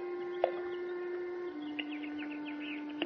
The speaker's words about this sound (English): What's that? Birds playing in the fish pond. Look at them. Happy birds. They're hissing.